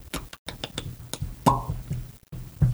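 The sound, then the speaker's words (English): A quick run of thudding footsteps tapping on a hard floor in a fairly steady rhythm, about ten beats over a few seconds, with no talking, as a person steps in time with their feet. “That was my feet.”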